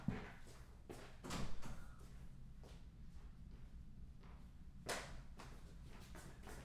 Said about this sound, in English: So my wife left for work, and she always closes the front door, but I just heard it open, and I don't want a javelina to come in.